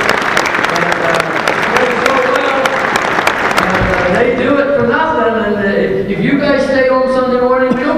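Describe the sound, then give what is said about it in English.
An audience breaks into loud, dense applause, a steady wash of many hands clapping for several seconds, then it thins out as a voice starts talking over the last scattered claps. “And you are so privileged, and you should bring your hands together for those who just bring you.”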